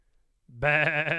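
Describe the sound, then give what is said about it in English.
A single loud sheep bleat, starting with a brief low lead-in and then a sustained wavering, nasal cry that carries to the end with no one speaking. “How did the freaking sheep get up here?”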